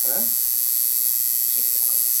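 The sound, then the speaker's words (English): A tattoo machine buzzes steadily throughout, a high, even electric whine, with brief bursts of murmured talk at the start and again near the end. “so we're gonna the machine is a little loud, so we'll have to edit. Try to see if I can knock some of the buzz down a little bit.”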